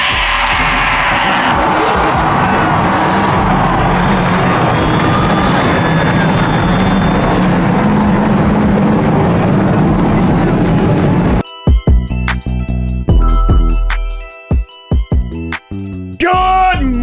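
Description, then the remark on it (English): A loud, sustained roar of many car engines revving together with crowd noise mixed in, then the sound breaks up into choppy bursts and bits of talk near the end. “God bless our troops, God bless America, and gentlemen, start your engine!”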